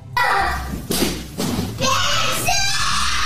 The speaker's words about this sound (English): He's having quite the shit fit. Now he's just throwing stuff around, chairs. He's wrapping himself up in a rug.